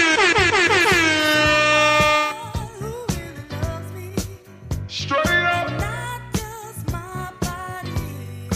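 A loud, blaring air horn blast holds for about two seconds, then gives way to a thumping beat with sharp percussive hits and brief horn-like stabs continuing underneath.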